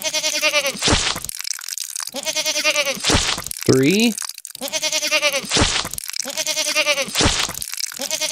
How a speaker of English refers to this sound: Yeah. These are good goats.